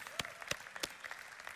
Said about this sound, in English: Yeah, okay, let's go ahead and clap for them real quick.